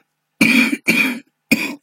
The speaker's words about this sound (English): Ooh. Hang on. I need a cough.